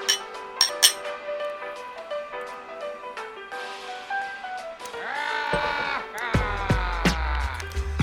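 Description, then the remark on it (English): Glasses clink together a few times in a toast, sharp bright taps followed by lingering ringing tones, with some warbling, voice-like sounds rising near the end. “Cheers, guys.”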